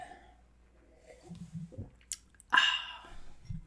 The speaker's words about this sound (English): Took another sip.